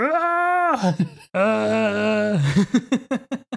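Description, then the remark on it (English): A dubbed movie scream from the character Klaus: two long, loud, sustained anguished wails on a steady pitch, separated by a brief break, then a rapid series of short, choppy, sobbing cries. “We get a great dub scream from Klaus.”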